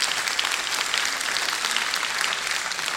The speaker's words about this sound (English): Now, if we're going to clap, let's clap. Hallelujah.